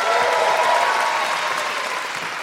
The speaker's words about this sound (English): Thank you so much. Big round of applause.